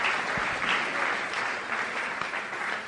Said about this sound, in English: All right, clap for the Bible study on the prophets. Clap for the Bible study on the prophets.